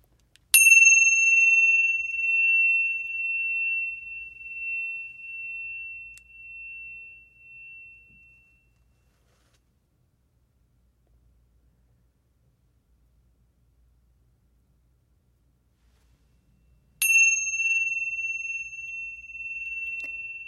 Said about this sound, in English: I have some chimes. Yay. So these are Tibetan silver chimes. I'm going to ring it once and that will begin our meditation.